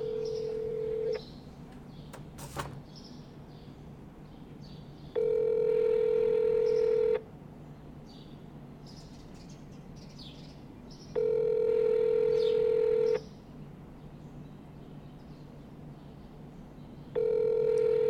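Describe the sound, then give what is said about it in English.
A phone line rings out in long, steady electronic tones, each lasting about two seconds and repeating at a regular pace against a faint background hum, after a brief tone and a click. “Let me try to call him.”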